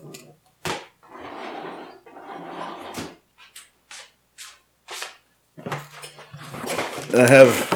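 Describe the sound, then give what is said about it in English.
A dog is let out through a door: sharp clicks and knocks of the handle and latch, rustling movement, then a louder rattling clatter and a brief low hum as the door swings open. “I'm going to let the dog out.”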